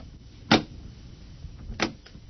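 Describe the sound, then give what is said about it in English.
Three knocks on a door, spaced far apart: a firm first rap, a second over a second later, then a faint final tap, with no talking. “And then, there was a knock on the door.”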